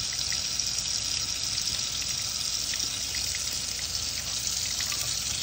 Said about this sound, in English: After 3 minutes, and the rinse that has started, it's tepid water. This is now really hot water. Very, very, very hot water.